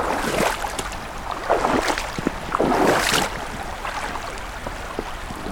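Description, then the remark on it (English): Water sloshes and splashes in a series of heavy, uneven surges as someone in rubber boots wades across the Crane River, with a steady wash of flowing water underneath. “Ooh, that almost went over the boots.”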